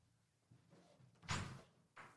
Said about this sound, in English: Is she opening a door and shutting it? I'm not sure if people can hear that.